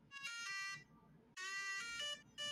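A chirpy 8-bit style phone ringtone plays a bright, buzzy melody in two bursts separated by a short pause, loud and electronic with a square-wave, video-game tone.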